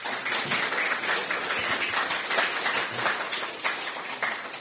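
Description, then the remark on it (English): An audience applauds a panel discussion, many hands clapping in a dense, even wash of sharp overlapping claps that holds at a fairly loud level throughout. “Can we give the panel a round of applause, please?”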